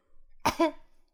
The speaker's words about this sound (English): He coughs once, I think, just before she enters the room.